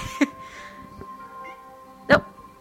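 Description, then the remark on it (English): A female cat lets out two short meows about two seconds apart, the second a bit louder, over a faint steady background hum with no talking. “That was Joplin's contribution.”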